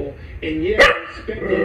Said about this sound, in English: But you can always get your dog to say, "I love you."